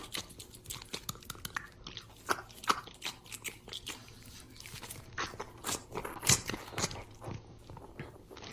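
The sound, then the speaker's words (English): Wet chewing on a rubbery silicone breast implant that had been surgically removed, with irregular squelching bites and crunchy clicks repeating steadily. No one speaks. “So you guys, let's begin chewing.”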